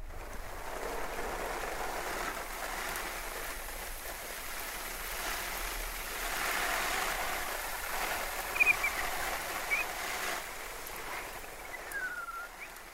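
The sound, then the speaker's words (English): A steady, continuous splash of water pouring from a watering can or hose onto outdoor tomato plants that have been dry for the last few days, with a few faint bird chirps in the background and no talking. “So now I'm going to water my tomato plants.”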